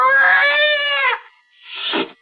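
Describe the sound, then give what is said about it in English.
A scrawny cat yowls loudly: one long, drawn-out wavering cry, then a brief pause and a shorter, harsher second yowl. No one speaks. “Slowly, it moved into my line of vision. It was a cat.”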